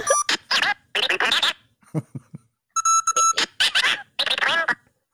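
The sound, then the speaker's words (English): A video game rabbit character's garbled, synthesized voice chatters in several quick bursts of nonsense babble, with a short electronic, beep-like tone partway through. Fairly loud. “It's the rabbit.”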